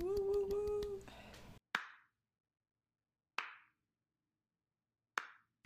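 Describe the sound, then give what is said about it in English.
A short inserted applause effect celebrating a 3-year anniversary of living in the Bay Area: after a brief tonal burst, three loud, crisp hand claps ring out one at a time, evenly spaced about two seconds apart, each fading quickly into silence. “I'll insert applauds.”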